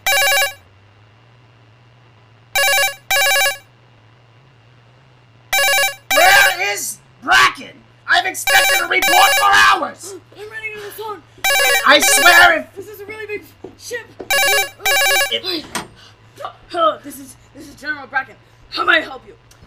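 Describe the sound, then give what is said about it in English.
A telephone rings in repeated paired bursts, loud, at first alone and then over people talking with a steady low hum in the background. “for finally coming to the phone.”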